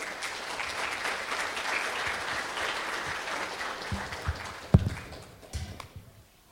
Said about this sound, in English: So can you give him a massive round of applause as he comes and shares with us this morning?